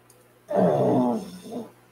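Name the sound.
dog snoring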